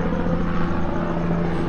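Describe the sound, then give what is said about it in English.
A helicopter passes overhead, producing a steady, loud mechanical drone with a low humming tone and broad rushing noise that holds constant throughout, with no voices. “I'm getting another pass from the helicopter over our head.”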